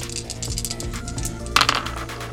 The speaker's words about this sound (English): All right, I will take a die from my backpack and roll 3 dice.